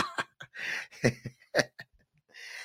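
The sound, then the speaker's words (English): Several harsh, irregular choking coughs burst out, broken by raspy, strained gasps and breathy hissing between them, with no talking. “Caught me choking.”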